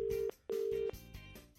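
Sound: telephone call ringing out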